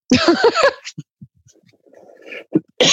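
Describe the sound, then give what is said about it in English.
A loud burst of harsh coughing in a quick run of several spasms, then a few faint throat noises and breaths, with another sharp cough starting at the very end. “Now I've developed a really bad cough, which is worrying for this podcast, isn't it?”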